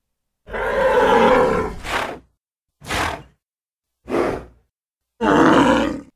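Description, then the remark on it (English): Loud bellowing roars from 100 raging bulls bursting out of a gate and charging, interspersed with sharp breathy snorts: a long roar, three short explosive snorts, then another deep roar, with no talking. “The gate burst open and out ran 100 raging bulls charging right for them.”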